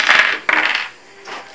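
Dice rattle and clatter across a hard table in a couple of quick bursts, a bright clicking tumble, followed by a quieter final skitter as they settle.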